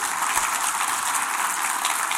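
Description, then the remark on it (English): A crowd at a service applauding steadily, a dense wash of many hands clapping at once with no pauses, filling the whole stretch at an even, fairly loud level. “Give them a round of applause there.”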